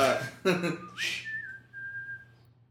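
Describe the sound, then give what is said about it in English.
A person whistles a short song melody for others to guess in a song-guessing game: a few breathy starts, then a clear tone that slides upward and holds a long steady note before fading out. “I'm not sure if I can whistle this.”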